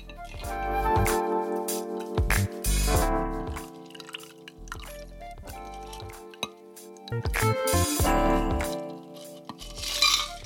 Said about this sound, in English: Freezing, and then you pour that into an ice-filled rocks glass.